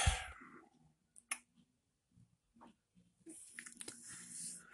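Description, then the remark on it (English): A person yawns: a breathy rush of air, a few small mouth clicks and smacks, then a longer drawn-out, slightly voiced exhale that trails off. “Excuse me. I had a yawn quick.”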